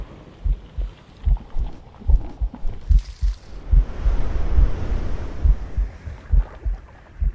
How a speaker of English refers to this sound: And then it can be deadly still. And all you hear is your heartbeat in your throat.